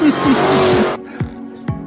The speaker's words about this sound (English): Dodge, 840 horsepower in this thing. Watch. Oh, that's nice. That's fake. They have to fake that now. Wow. Wow. I want that. That's fast. It's a Dodge Dart? No. It's a Challenger.